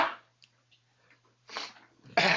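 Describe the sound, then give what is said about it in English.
A single sneeze: a quick rising intake of breath, then a loud, sharp explosive burst right at the end, with faint rustles before it. “Bless you.”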